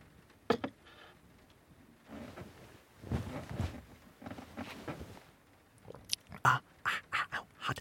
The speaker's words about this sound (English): Hot. I just said that it needed to cool down more. Why did I try to take a sip? Oh, I'm such an idiot.